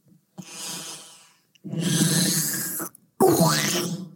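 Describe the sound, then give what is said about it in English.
Someone clears their throat in three harsh, raspy bursts, the last one rougher with a rising then falling strained pitch, loud and alone with no talking. “I gotta clear my throat.”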